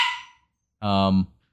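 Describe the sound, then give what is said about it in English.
A dog barks: a sharp bark that fades quickly, then after a short pause a longer, tonal bark that is almost a whine. No one talks. “Sorry, dog was asking for something.”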